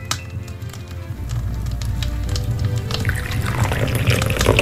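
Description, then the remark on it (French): A drink is poured, a steady liquid rush with fizzing bubbles that grows brighter and louder toward the end. No one speaks. “C'est des bulles qu'on entend? Oui, c'est des bulles.”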